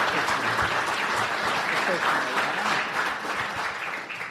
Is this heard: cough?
no